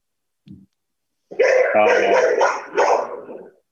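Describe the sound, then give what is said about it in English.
A dog barks in a quick burst of several loud barks and yips after a brief soft sound, the barks running together over about two seconds, as the speaker's daughter is dropped off from volleyball practice. “That's the Christmas dog Peaches right now as my daughter gets dropped off from volleyball practice”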